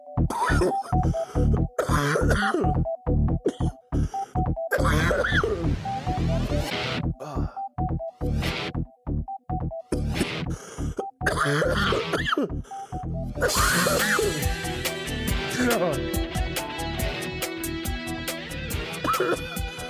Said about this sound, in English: So I apologize for all my coughs, but yeah, so just letting you know ahead of time that I will be coughing quite a lot in this episode.